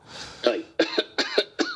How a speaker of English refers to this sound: It could have been the fact that I knew you were stopping by, and I was like, man, I feel a cough coming on.